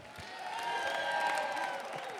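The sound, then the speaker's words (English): A crowd applauds steadily for Pastor David Martin, with bright cheering and whoops rising over the clapping. The noise holds at a fairly even level throughout the short stretch, and nobody speaks. “All right, guys, let's give a big round of applause for Pastor David Martin.”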